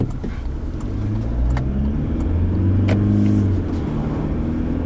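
A car engine revs up steadily, its low harmonic drone climbing in pitch as the empty vehicle accelerates in very wet weather, heard from inside the cabin with a continuous road rumble underneath.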